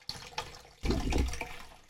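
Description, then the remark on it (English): Drinks are poured into a bowl, a soft trickle that swells into a fuller, splashing gush partway through. Moderately loud, with no talking over it. “Yeah, pour it in.”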